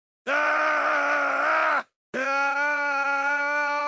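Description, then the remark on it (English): Two long, loud vocal screams, the first about a second and a half with a wavering pitch, then a brief silence and a second sustained, steady scream that runs to the end. “The kidnapper recoiled in surprise from a horrific scream he heard the instant he pressed the intercom button.”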